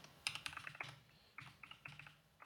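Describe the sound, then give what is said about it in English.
Fast keyboard typing in irregular bursts, a quick flurry of key clicks, a short pause, then more clustered taps, fairly quiet, with no voices. “Were you not typing it on the console?”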